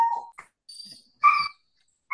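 A dog lets out several short, high-pitched yips and whines in quick succession, moderately loud, with brief pauses between each cry and no one speaking.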